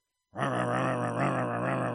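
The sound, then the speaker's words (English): After a moment of silence, a voice imitates a car engine struggling and failing to start as the key is turned: a loud, sustained droning groan with a faint rhythmic pulse, held steadily to the end. “And when you find yourself being afflicted by anything, car won't start.”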